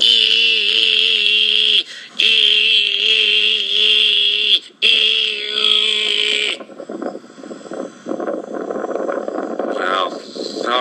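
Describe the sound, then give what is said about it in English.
A cicada answering a call, heard while sitting under a tree in the sunshine on an afternoon walk, makes a loud, shrill buzzing drone in three long bursts separated by brief breaks, then gives way to quieter rustling noise and a voice talking. “Oh, it worked. Listen to that. I got a call back. I got the cicada swiped left on me, man.”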